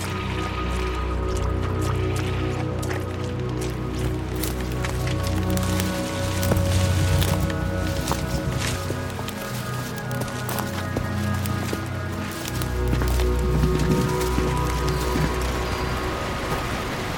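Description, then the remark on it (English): A waterfall rushes steadily throughout, a dense, continuous roar of falling water with splashing and dripping textures, fairly loud and unbroken, with no voices over it. “I told you I heard something! A waterfall.”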